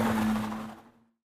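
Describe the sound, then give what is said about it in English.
A car roars off, its broad engine rush and steady low hum starting loud and then fading out quickly over about a second, leaving silence. “Jeff, shaking his head, gets out and slams the door as Brad speeds away.”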